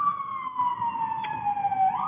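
An NYPD police car siren wails outside in New York in one long, slowly falling tone over a low traffic rumble, fairly loud and steady, with no one talking.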